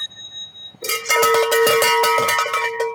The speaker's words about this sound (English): Is someone going to ring the bell? I don't know.